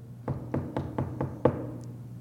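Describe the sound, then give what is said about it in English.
Six firm knocks on a door in a steady, even rhythm, the last one a little louder, over a low background hum with no talking. “And the man just kept knocking.”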